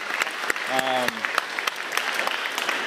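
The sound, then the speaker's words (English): A round of applause for a young man and his organization, Kappa Alpha: many hands clapping in a dense, steady patter for the whole stretch, with a short voiced whoop or cheer rising briefly above it early on. “I want a round of applause for this young man and his organization, Kappa Alpha.”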